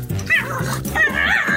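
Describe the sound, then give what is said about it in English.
A bulldog puppy whimpers and yips in a tub filled with water while struggling to get onto a tiny inflatable float: a run of high, wavering whines with short yelps, continuous and fairly loud over a brief stretch, with no talking. “Yeah, it's the sound of a bulldog, and in the video, you see this dog in a tub that's filled with water, and he's trying his very best to get onto a tiny inflatable float, but you know he's struggling with it”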